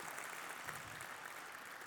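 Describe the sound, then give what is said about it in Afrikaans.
A church audience claps steadily during a morning service to welcome its online church family, a dense wash of many overlapping hand claps at an even level throughout, with no voices standing out. “So, hy kerkfamilie, wil jy asblief vir jou online kerkfamilie, 'n lekker hande klap, en hulle ook verwelkom in die diens vanoggend.”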